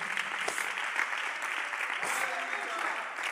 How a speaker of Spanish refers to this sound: Aplaude, Señor, por favor.